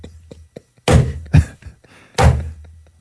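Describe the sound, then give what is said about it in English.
Knocking on a door: a few light taps, then three heavy, booming thuds with pauses between them, loud with no talking. “That legit sounded like the Babadook”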